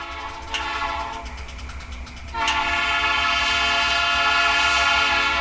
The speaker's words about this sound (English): We leave you this week with the rhythm of a coal train winding its way through Colorado. Clay Reeves recorded the scene for ….